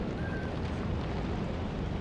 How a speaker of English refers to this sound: It's definitely someone mowing the lawn outside. That's something I can hear now. You can hear it on your... I can hear it outside my window with my ears.